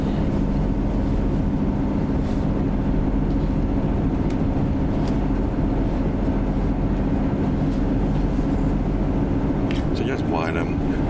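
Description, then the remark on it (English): A steady, heavy rumble of a train rolling along as it comes up to Wylam Station, heard from inside a carriage, with a brief high squeal near the end as it slows. “We're coming up to Wylam Station.”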